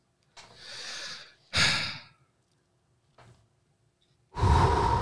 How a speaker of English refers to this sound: Let's do some breathing exercises, kids.